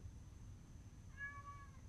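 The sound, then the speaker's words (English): A domestic cat that keeps coming to the house gives a single short meow, fairly soft, rising then falling over a low steady background rumble with no voices. “This motherfucking cat keep coming to my motherfucking house like he live here.”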